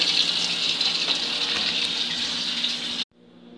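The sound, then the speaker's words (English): Water runs steadily from a tap into a glass for about three seconds, a bright hissing pour that cuts off abruptly, leaving a faint low hum behind. “I need a glass of water here.”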